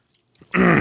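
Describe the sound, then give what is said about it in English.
A short, loud throat clearing, a single harsh rasping burst after a brief near-silence, with no talking. “Let me pause and clear my throat.”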